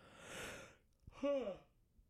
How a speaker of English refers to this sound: Oh my God, five yawns? For Christ's sake. Somebody shoot me. This is ridiculous. Five goddamn yawns I've had. This is insane. I mean, it is, it's early, I'll tell you that. It's definitely early in the morning, but five yawns early?